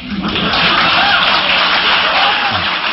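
A large audience of educators cheers and laughs together, a loud, dense wall of crowd noise with clapping mixed in, holding steady for the whole stretch without any single voice standing out.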